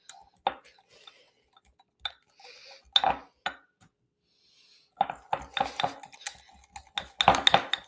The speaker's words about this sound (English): Just whisking it. Sorry if it's really loud, but just whisking it to get it a good consistency.